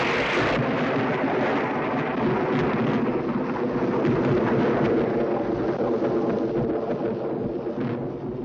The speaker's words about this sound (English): You gotta cut in with, like, spooky castle thunder. Castle Thunder? Like, yeah, that's like the name of like the file that I have. Oh, God. Oh, you have a file. I have a sound file.